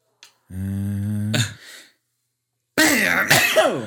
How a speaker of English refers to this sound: I sneezed. What the fuck? That was so weird. Wow. That bang drove a sneeze out of me.